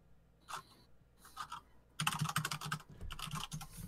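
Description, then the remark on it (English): Close-miked typing on a computer keyboard: a few sparse key taps at first, then a dense burst of rapid clicking clatter for the last two seconds. No voices. “My microphone is right next to my keyboard, so I'm sure you can hear all of that.”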